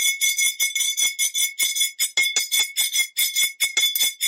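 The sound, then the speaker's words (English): Metal tapping rapidly and repeatedly against a water glass with labels on it, a quick stream of bright ringing clinks at a slightly uneven rhythm, fairly loud, with no talking. “And that's just a piece of metal against glass, and the glass has got some labels on it, and that's what's giving a nice kind of...”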